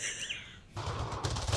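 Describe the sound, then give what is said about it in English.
Video game gunfire: a rapid, loud burst of overlapping shots that sets in abruptly after a brief stretch of higher, warbling electronic tones, with no one talking. “Well, I mean, when they hear gunshots, they got to come and do it.”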